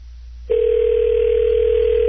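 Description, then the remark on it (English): A telephone ringback tone on an outgoing call: after a brief quiet moment, one steady, unbroken electronic tone begins and holds loud until the end, with no voices. “Is that enough rings?”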